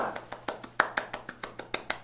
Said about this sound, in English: And you can hear some clapping from behind and everything. And then there's clapping piped over the speakers from the audience and some cheering.